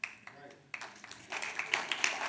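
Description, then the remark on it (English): Scattered clapping from a crowd, quiet at first and then swelling into fuller applause, with a faint voice audible early on. “And I don't say that, thank you, I don't say that to get your applause.”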